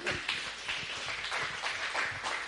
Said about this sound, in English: Give him a clap, everybody.